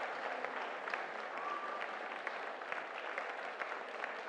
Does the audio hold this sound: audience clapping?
yes